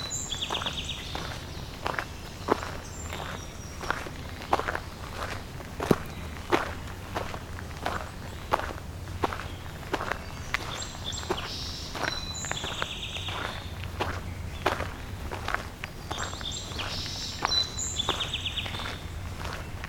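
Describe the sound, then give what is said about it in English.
A song sparrow sings several bright, trilling phrases, repeating every few seconds over steady, crunching footsteps of someone walking. “The song sparrow.”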